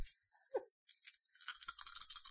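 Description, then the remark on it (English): Five dice, rolled for a Charm Discourses roll, rattle and clatter in a quick, bright burst of hard clicks, growing into a dense stretch of rapid tumbling taps. There is no talking. “I would also like you to roll Charm Discourses. That's just five dice for you.”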